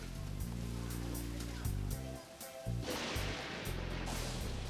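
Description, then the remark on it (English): Heavy rain pours down outside in a steady, dense hiss that swells louder in the second half, with a low droning hum running underneath. “Wow, listen to a downpour out there.”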